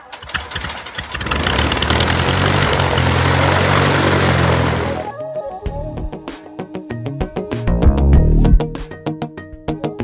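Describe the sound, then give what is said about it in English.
A propeller airplane engine roars loud for about five seconds, then drops away into choppy, sputtering engine bursts and clattering mechanical noises. “A little bit of background noise throughout the day, but it's just airplanes, so it's not really noise.”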